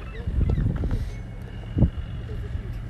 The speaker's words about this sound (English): Down here on the wharf with about 30 or so locals and well-wishers from inshore. Boats are getting ready.